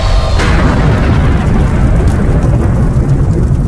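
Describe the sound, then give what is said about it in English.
A fiery blast of fire erupting from a character's hands, hitting a back door and blasting the doors wide open, roars out in a loud, deep, continuous rumble that holds steady for several seconds, dense and crackling throughout, with no voices. “he just focuses for a second, and then boom, fire erupts from his hands, hits the back door, rolls back towards you guys for a moment, because it's fire, doesn't have any force, but he seems to be able to refocus it, and the doors blast wide open.”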